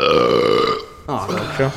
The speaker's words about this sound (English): Sorry. Would you quit it over there? No. Our listeners don't like burping.